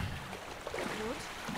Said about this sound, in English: A boat? Right here on the edge of the rock!